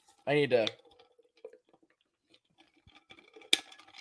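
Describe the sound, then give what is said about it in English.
A short voiced grunt, then quiet sipping and swallowing of water to chase a sip of eggnog: scattered small wet clicks and drips, ending with a sharp clack. “Did you just chase it with water?”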